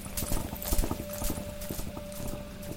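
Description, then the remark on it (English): Horses' hooves clip-clop in a steady, overlapping rhythm, as if several are marching together, with a faint ringing metallic tone sustained underneath. “And I hear a voice, like a singular voice, singing, with the flapping of banners against poles and the march of horses, the creaking of armour and the jostling of swords against hilts.”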